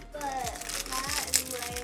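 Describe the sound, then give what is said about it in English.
A fortune cookie's plastic wrapper crinkles and crackles steadily for about two seconds, a busy rustling texture with one sharper crunch near the end, while faint voices murmur underneath. “I'm grabbing a fortune cookie”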